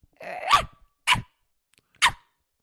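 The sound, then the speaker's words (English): A person imitates a dog barking: one drawn-out, growly woof followed by two short, sharp barks, fairly loud with silence between them. “would you like to give us a bark?”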